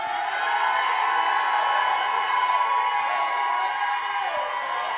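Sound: audience shouting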